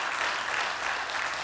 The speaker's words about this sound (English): And I believe that deserves an applause. That's absolutely awesome.